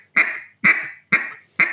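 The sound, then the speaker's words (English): Four short, raspy quacks blown on a duck call, evenly spaced about half a second apart, loud with no talking. “If anything, I'm probably pushing a little more air into a quack and stringing it out a little more because I'm trying to make it that quack last.”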